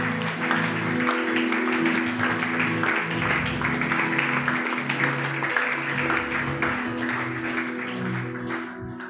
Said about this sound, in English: Somebody shout an amen. Clap unto Jesus.